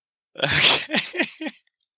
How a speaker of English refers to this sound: Okay. Just me breathing. Nostrils.